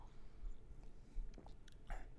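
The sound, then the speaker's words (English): A few quiet sips of tea, soft wet slurping clicks from the mouth grouped near the end, with no talking over them. “Sorry, I'm going to take a sip of this absolutely disgusting tea.”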